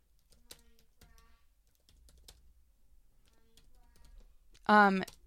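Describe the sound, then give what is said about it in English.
Soft, scattered keystrokes tap on a computer keyboard at an irregular pace, typing into a chat, fairly quiet, before a short burst of louder speech cuts in at the end. “You're typing to the chat?”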